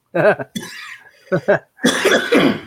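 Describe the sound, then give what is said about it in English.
A series of loud coughs: a couple of short sharp barks followed by a longer, rougher hacking fit, with some throaty vocal noise at the start. “Oh, you've passed the cough to me.”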